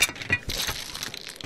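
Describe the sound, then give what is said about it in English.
A game board tipping over, its pieces clattering and scattering in a quick burst of bright, rattling clicks and knocks that tumble on briefly before thinning out. “You've knocked the board over!”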